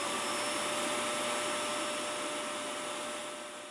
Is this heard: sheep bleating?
no